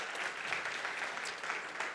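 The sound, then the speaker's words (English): A church audience applauds two men coming up on stage as elder nominees: dense, steady clapping from many hands, a continuous bright crackle that holds an even loudness throughout with no talking over it. “And so let's give these guys a round of applause as they come up.”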